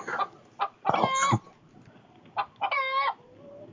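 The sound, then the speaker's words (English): Chickens cluck in short bursts, broken by two louder, drawn-out squawking calls with a crowing quality, over a faint background hum. “Oh fuck, it's chickens again.”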